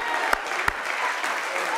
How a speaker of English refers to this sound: Hallelujah. Hallelujah. Give God a hand clap.